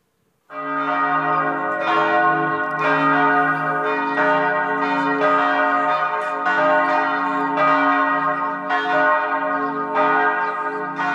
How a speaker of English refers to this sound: If you were brought up in a congregation in Europe back in the day and even today, when the bells start ringing, if you're in the village and they start an hour before service, if you're in that far out village, the farthest one, that's when you